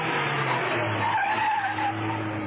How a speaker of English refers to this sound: But Mrs. Peel had followed them and ended up at Greasepaint Grange. Outside the building, she swung the car to a stop.